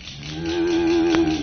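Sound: cow mooing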